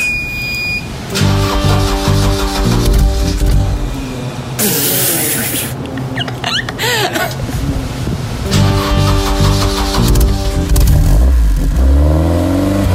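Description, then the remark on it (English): A car engine cranks to life and revs repeatedly, loud, its rumbling pitch rising and falling, with a brief hissing burst partway through. “Okay, should we start her up?”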